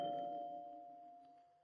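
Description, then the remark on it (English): A doorbell rings once, a single bright chime whose clear tone slowly fades away over a couple of seconds, fairly soft, with no voices around it. “I don't think that doorbell took the first time.”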